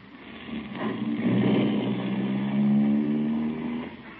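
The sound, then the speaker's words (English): A car engine hums steadily as the vehicle drives along, its pitch rising slightly as it picks up speed, with a constant drone and no voices. “Look out of the car window”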